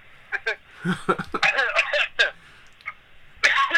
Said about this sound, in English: I'm coughing because I just ate Wendy's. And it has that effect.